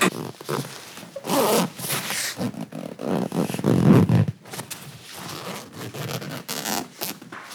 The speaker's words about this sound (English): I was opening and closing my lip bag zipper.